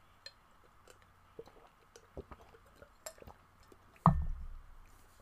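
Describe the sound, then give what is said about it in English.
Someone gets a drink of water: scattered small clicks and taps as a container is handled, then a louder thump and a brief burst of liquid sounds near the end, with no talking. “But yeah, basically, going back to what I was saying, let me get some water here.”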